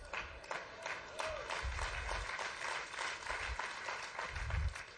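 An audience gives lukewarm, half-hearted applause: a steady patter of many hands clapping at moderate volume for several seconds, with faint crowd murmur and low rumble underneath.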